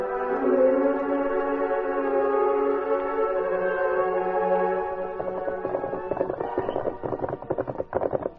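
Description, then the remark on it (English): Horses' hooves clip-clop in a quick, steady rhythm as the Lone Ranger and Tonto ride toward the legation building, rising over the last few seconds as sustained brassy music fades beneath them. “Moments later, the Lone Ranger and Tonto, riding the greatest and strongest horses in all the West, came in sight of the legation building.”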